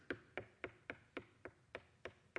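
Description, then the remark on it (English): A steady series of about nine quick knocks on a wooden door, evenly spaced and fairly soft, with no voices, just the sharp raps ringing briefly one after another. “Jesus is knocking. He's knocking on the door.”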